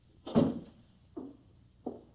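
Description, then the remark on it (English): A door shuts with a heavy, booming thud, followed by two lighter knocks about a second apart, each fading quickly. No one speaks. “Should I close the door?”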